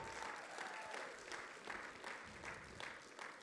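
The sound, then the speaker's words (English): A large audience claps steadily for the worship team, a dense, even wash of applause with slight surges and no voices standing out, sustained throughout. “What can we give our worship team?”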